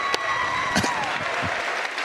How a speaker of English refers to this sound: Fantastic sight. Gets a standing ovation from the crowd.